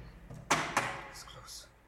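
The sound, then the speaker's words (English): A stuck heavy door is shoved shut with two loud thuds in quick succession, the second a sharp bang, followed by a faint hiss and low rumble as things settle. “Close the door. Can't. I can't. It's stuck.”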